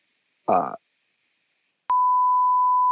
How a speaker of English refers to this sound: Beep it out.